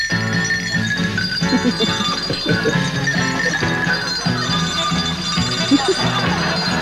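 Bells ring in a continuous, overlapping peal, their strikes blending into a sustained, shimmering wash of metallic tones that stays at a steady loudness throughout.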